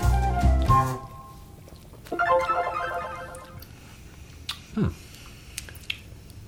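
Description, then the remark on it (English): Cans of English style mild ale (5% alcohol by volume, IBU 13) being cracked open: sharp pops with a burst of hiss, followed by a stretch of crackling fizz and a few faint clicks, with no talking. “Let's crack these open and see,”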